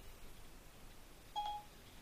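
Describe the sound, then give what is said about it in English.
A smartphone's Siri voice assistant activation beep: one short, clear electronic tone lasting about a third of a second, rising above a faint steady background hiss with no one speaking. “Hey, Siri. Oh, it's going to be a phone.”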